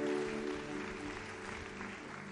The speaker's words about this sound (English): If you are clapping your hands, please clap it well.